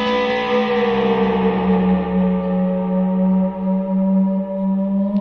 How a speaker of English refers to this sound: You guys hear that? Oh my gosh. I call this the spaceship sound.